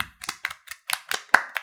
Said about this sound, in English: Everybody clap.